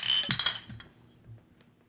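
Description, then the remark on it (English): Glasses clink together in a holiday toast, a few bright chiming taps in the first half second, then a short ringing decay with faint clatter. “All right, cheers! Cheers!”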